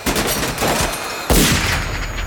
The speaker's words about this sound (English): Buck's BAR goes wild, spraying bullets into the air as he stumbles.